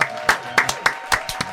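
People clap to welcome someone who has just arrived, a short burst of about eight sharp, crisp claps at an uneven pace, with a faint steady hum underneath and no talking.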